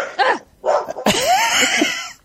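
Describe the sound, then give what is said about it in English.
A dog barks: two quick, sharp barks, then a longer, drawn-out bark with a whiny edge. Loud and clear, with no talking over it. “Shush! I'm looking for the mute button. Dog remote.”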